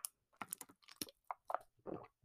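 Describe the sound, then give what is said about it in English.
Quiet mouth sounds of someone sipping water and swallowing, a series of short wet gulps and slurps spread over a couple of seconds with no talking. “Let me do you guys a solid and take a sip of water here.”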